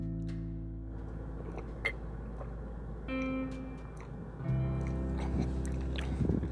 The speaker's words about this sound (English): More of a gulp. Nice.